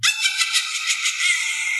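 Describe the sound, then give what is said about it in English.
A witch-themed buzzer sound effect for a Halloween quiz game, used by a contestant to buzz in: a bright, high-pitched burst that pulses rapidly and evenly for just under two seconds, steady in loudness, with no talking over it. “Okay, we got a witch for Laura.”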